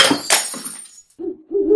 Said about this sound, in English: Breaking hoo-hoos. The mild Wednesday news, yeah. Crash, boom, wallop, there's an owl. What's he got in his mouth? Oh, it's news. It's hoo-hoos. Fresh hoo-hoos.